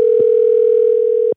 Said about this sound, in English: It's ringing. It's ringing. Let's see if he picks up.